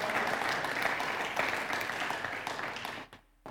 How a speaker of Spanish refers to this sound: Dele la gloria al Señor si se la va a dar. Dele un aplauso al Señor, gloria a Dios. La gloria sea para Él.